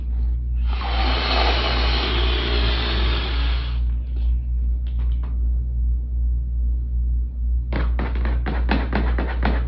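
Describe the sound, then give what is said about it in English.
Swans, unhappy at being wrangled in by stable boys, hiss: one long, harsh breathy hiss lasting a few seconds, then a quick run of short sputtering hisses, all over a steady low rumble. “Those are hissing swans.”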